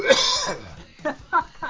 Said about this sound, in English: I got to mute. I have to clear my throat.